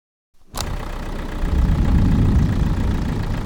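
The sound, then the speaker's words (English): After a brief silence, a heavy tow truck engine rumbles to life and idles, a steady, loud low-pitched drone that grows fuller after a second and holds with no voices. “The tow truck driver said he would give us a ride.”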